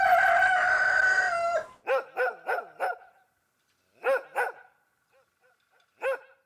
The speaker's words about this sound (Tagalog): Kasi, sa bahay namin, may narinig kang ganun sa umaga eh. Kasi yung kapitbahay namin, nag-aalaga ng mga manok. So pag kumigising ako sa umaga, yun naman talaga yung narinig ko kahit nasa village kami.